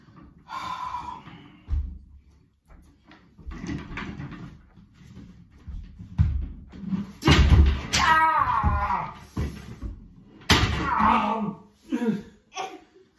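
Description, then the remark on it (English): A folded folding chair, with only two legs touching the floor, topples over with a loud clattering crash as a father tries to sit on it without opening it, followed by a second bang a few seconds later, amid a child's gasps and excited vocal noises. “You see, Daddy shows us that you can't sit in a folding chair unless you open it.”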